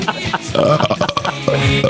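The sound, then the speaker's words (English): Two loud, drawn-out burps follow one after another, each a deep, rumbling belch lasting under a second, with some background noise. “You happen to tape that shit Belch down fest.”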